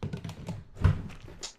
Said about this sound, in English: What the fuck was that? That was me opening a drawer.